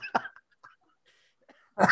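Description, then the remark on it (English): A person coughs in a couple of sharp bursts, one early and a stronger one at the end, with brief quiet breaths and small throat sounds in between. “That's when I start coughing.”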